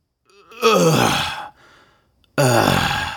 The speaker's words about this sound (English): I mean, you know that sound, right? It's the sound you make every time you get up out of a chair, or out of your car, or out of bed in the morning. I know you know that sound.